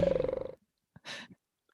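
A giant underground worm creature from Tremors roars: a loud, rattling, pulsing growl that cuts off abruptly, followed after a short pause by a breathy, hissing exhale.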